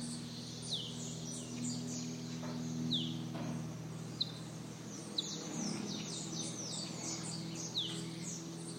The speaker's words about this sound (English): I want to play for you the sound of some birds.